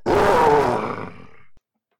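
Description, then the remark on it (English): A person voices one loud, rough, fearsome growl, imitating a creature growling back: a deep rumbling roar that starts strong and fades out over about a second and a half, followed by silence. “Okay, you growl at this thing. It growls back at you, much more fearsome.”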